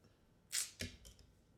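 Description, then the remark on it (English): A quick swipe of a hand slapping the little tag off a small microphone: a short airy whoosh, then a dull smack and a couple of faint follow-up knocks. “That was just him slapping the little tag. off the, you know, little mic and shit.”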